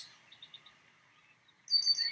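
Small birds chirp and tweet outdoors in the early morning, a few quick short calls early on, then a louder, busier burst of song near the end, with no one talking.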